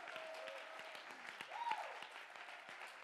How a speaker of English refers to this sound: Clap your hands. Shout.